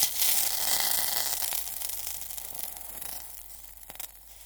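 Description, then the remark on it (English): A sharp, hissing fizz bursts out as one tiny drip of water hits a really hot wok while cooking, loudest at the start and slowly fading into a crackly sizzle with a few faint pops near the end. “You know, if you're cooking using a wok and you get it really, really hot, and if you drop one tiny drip of water into it, it makes the most fantastic fizzing sound.”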